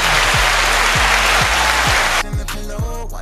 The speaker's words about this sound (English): Applause for the assist.